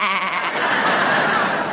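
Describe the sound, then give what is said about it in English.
A man's voice imitates a goat, producing a loud, wavering bleat that lasts a couple of seconds, steady with a quavering, nasal tone. “Well, …, while you're trying to decide whether you are going to be a leading man or a goat”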